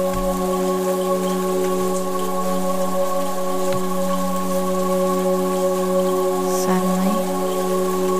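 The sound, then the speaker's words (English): Gentle rain drizzles steadily throughout, a soft continuous patter blended beneath a sustained, humming musical drone, with no voices present. “Begin to feel a gentle drizzle. The raindrops are cool and refreshing as they lightly touch your skin.”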